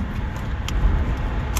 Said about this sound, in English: This is In the Car with …. I'm on the 605 freeway at the moment.